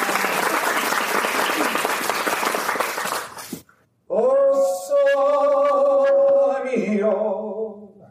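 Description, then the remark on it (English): An audience at the Mount Rushmore National Memorial, outdoors, breaks into loud, steady applause for about three and a half seconds, then it fades to a brief silence before a man begins singing a sustained, melodic line. “If you'd like to applaud that, you're welcome.”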